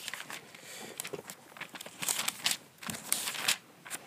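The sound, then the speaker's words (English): Pages of a paper Bible being flipped to 1 Corinthians chapter 3, a steady run of crisp rustles and soft flicks over about four seconds, with no voices. “So I'm flipping there currently.”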